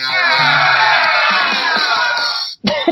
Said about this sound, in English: Could you hear the fart sound at the end? I did. I liked that a lot, actually.